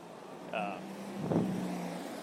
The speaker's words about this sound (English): Yes, that's a truck going by.